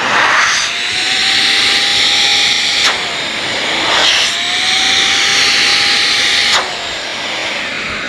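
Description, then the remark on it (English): A loud vacuum cleaner motor whine runs steadily throughout, its pitch rising and climbing higher in stretches as the motor winds up with its outlet blocked, with sharp clicks or thumps marking sudden changes in the airflow sound. “But if you block the intake, you hear the motor wind up and it gets really high, right? So the same thing happens when you close the outtake, and I don't know if I can do this very well here, but I'm gonna try.”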